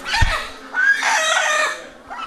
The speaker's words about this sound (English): Even so, the chickens still don't seem to be too pleased.